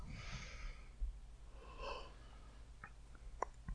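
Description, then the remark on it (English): A person yawns, a long breathy inhale and exhale in a couple of drawn-out swells, followed by a few faint clicks and rustles, with no talking. “I was yawning.”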